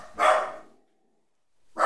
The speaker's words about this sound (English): What happens in your neighborhood that this dog goes so crazy? You know, a person walks by. Maybe another dog walks by. A leaf blows by from the wind. Maybe someone with a stroller.